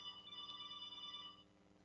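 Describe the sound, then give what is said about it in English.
A mobile phone rings with a bright, steady electronic tone that sustains for over a second before cutting off, with no talking over it. “you're ringing.”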